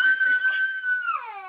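A baby lets out a long, high, steady wailing scream that holds one pitch, then breaks and slides downward at the end, loud and alone without talk.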